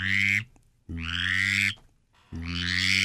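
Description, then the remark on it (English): Three raspy, reedy male mallard drake whistle calls in a steady rhythm, each lasting about half a second, with a buzzy low tone under a brighter nasal edge that rises slightly. Loud and clear, no talking. “Here's a drake whistle, a male duck mallard whistle.”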